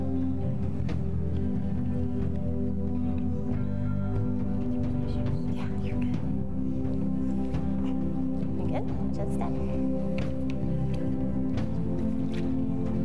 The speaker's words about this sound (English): All right, then. Awesome. Let's get you over into this water, huh?